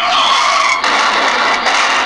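A loud, harsh tire skid from a car crash sound effect, a continuous high screech with brief wavers in the middle, lasting about two seconds with no voices.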